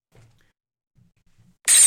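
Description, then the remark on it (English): After a near-silent stretch with a few faint low thumps, a teacup suddenly shatters loudly, a bright, crashing burst of breaking ceramic that rings out to the end. “Oh, shit, I broke my teacup.”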